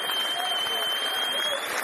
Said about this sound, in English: Big applause for Sacco going off.